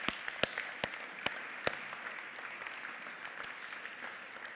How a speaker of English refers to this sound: And I don't know, it's not very British, but I'm going to ask you to give yourself a clap and the Lord a clap, because that is amazing.